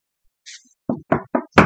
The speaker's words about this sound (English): Knock on wood.